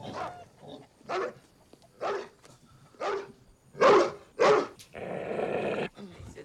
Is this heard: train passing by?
no